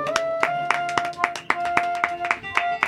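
A show audience gives a guest a round of applause, clapping in a steady, even rhythm, about three or four sharp claps per second, over sustained musical tones, with no talking.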